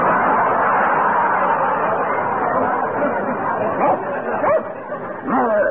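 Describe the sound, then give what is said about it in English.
A man's voice barks and yips like a dog, imitating a big, brown Airedale, a run of loud woofs and excited yelps mixed with chatter, the imitated barks growing sharper toward the end. “you are an Airedale. A big, brown Airedale. Speak.”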